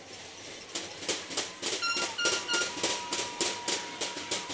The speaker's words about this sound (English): We may have to turn our crowd mic down. We've got a student section below us beating on pieces of tin.